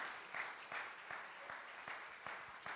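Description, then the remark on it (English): Hand clapping in a steady, even rhythm, about seven or eight sharp claps over a soft wash of background applause. No one speaks. “I'm clapping for all of us, because I know it's not just me.”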